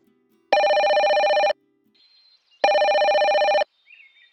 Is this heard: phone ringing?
yes